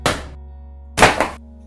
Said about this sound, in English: She slammed the books on her desk, asking who picked on the boy.